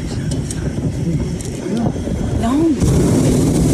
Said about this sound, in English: Hot air balloon? That's the hot air.